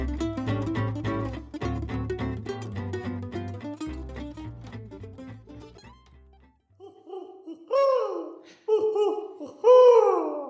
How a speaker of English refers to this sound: That owl has so many lives. I'll say. I think we killed him off one time, didn't we? We've killed him off many times.